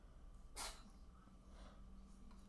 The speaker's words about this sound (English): you might hear Dr. President, our new kitty in the background in this one. He had some sneezes while eating food